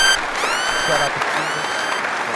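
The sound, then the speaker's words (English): A crowd applauds with dense, steady clapping that holds at an even loudness for a couple of seconds. Thin high-pitched tones and faint voices run over the noise of the clapping. “If you're new, you gotta clap for me, bitch!”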